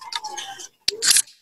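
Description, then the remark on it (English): A can of Big Rock Brewery Traditional Ale cracks open with a sharp metallic click, followed by a short burst of fizzing hiss and another quick click, after some soft handling noise. “All right, let's crack them.”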